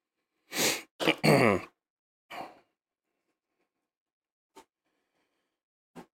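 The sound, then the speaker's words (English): A short burst of harsh coughing: three rough hacks in quick succession, the middle one longest and strained, followed by silence broken only by a couple of faint clicks. “That coughing fit was a doozy.”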